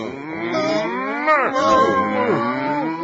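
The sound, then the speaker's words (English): A cow moos in one long, loud, drawn-out call lasting a few seconds, its pitch wavering and sliding up and down, with no talking. “Hey, look at me, I'm a Jersey cow. Moo cow.”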